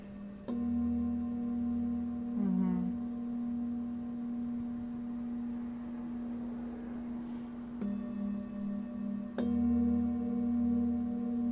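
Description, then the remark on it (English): A singing bowl is struck three times, each strike blooming into a steady, low humming drone with shimmering overtones that sustains without pause through the whole stretch; a smaller bowl rests on the sternum in addition to one placed on the abdomen. No one speaks. “And then this is a smaller sized bowl in addition to the one that's placed on the abdomen.”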